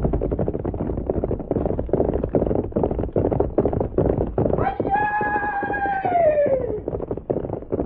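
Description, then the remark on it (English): Hooves pound in a fast, steady galloping rhythm from start to finish, loud, and partway through a horse lets out a long, descending whinny over the hoofbeats. “You get on horse. We go meet fellow who come.”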